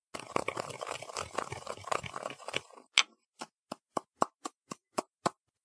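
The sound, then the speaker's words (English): Gritty, continuous crunching and scraping of ordinary hard cough drops being ground up into powder for a few seconds, then about nine sharp, evenly spaced taps ring out alone. “I will now grind up the cough drops.”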